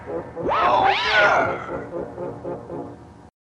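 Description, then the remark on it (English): Giant monster roars from Godzilla and Anguirus talking to each other in a Godzilla movie trade back and forth: a loud, screeching cry that swoops up and down in pitch overlaps a second roar, then gives way to a string of softer, rhythmic grunting calls. “Oh, and this is the movie where Godzilla and Anguirus talk to each other.”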